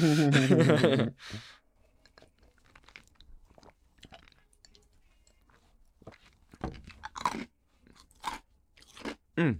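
Crunchy chewing of whiskey ice cubes: a string of irregular, crisp bites and crunches, some faint and some louder, following a short loud voiced sound at the start.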